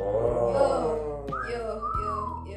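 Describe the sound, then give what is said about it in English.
A person imitates a catcall whistle: a quick rising note and then a long falling glide, heard over a low background hum of voices. “You know those jeans that stand in the corners and then they whistle at you?”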